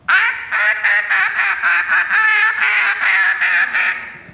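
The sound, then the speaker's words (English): A duck call blown loudly, imitating a duck's quack in a rapid run of about a dozen raspy, nasal quacks with brief gaps, no voices. “All right, so demonstrate for us this morning the difference between a duck call and a goose call, because, I mean, the world is dying to know.”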